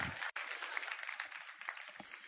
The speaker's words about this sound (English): And if you believe it, would you give him a hand clap of praise? Woo!